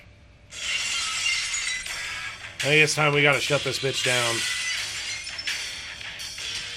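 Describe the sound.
A loud burst of shattering glass bursts in suddenly, a bright crashing smash that rings on with scattered tinkling, the wrestler entrance sound effect of Stone Cold Steve Austin, while a man talks over it in a raised voice.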